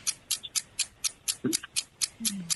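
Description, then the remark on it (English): A game clock timer ticks steadily during a timed trivia quiz round, about ten crisp, evenly spaced ticks roughly four per second, with a brief low murmur slipping in beneath a couple of them. “Start the clock.”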